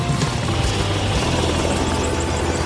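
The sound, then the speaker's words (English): A helicopter flying at the NSF's Lake Hoare field camp by the Canada Glacier drones steadily and loudly throughout, a dense rotor and engine roar with a low, throbbing rumble that stays constant. “Everything comes in by helicopter.”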